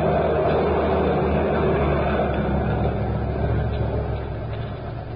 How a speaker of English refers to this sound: Driver! That truck wants to get to the street.